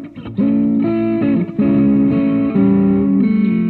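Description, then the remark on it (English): A loud electric guitar played through an amp tone preset with a distorted, effects-heavy tone, ringing out a few sustained chords that shift every second or so, with no talking. “I haven't gone through a lot of these tones in a long time, so I'm just sort of searching for some.”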